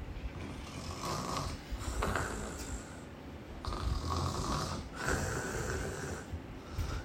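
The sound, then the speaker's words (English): A man's heavy, rumbling snores at night, heard from across the house, rise and fall in slow cycles, each long rasping inhale followed by a breathy exhale, loud and continuous with no talking. “And I can hear his loud, thunderous snore from across the house.”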